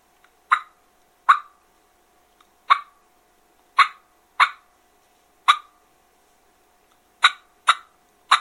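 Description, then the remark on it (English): About nine short, sharp turkey clucks, a content call, less stern and less hollow than an alarm putt, at uneven intervals, each a quick, fairly high-pitched pop with a brief tail, separated by silence. No talking. “Now, a cluck, you're going to have that less stern, less hollow, pitchy sound, and it's going to be more content.”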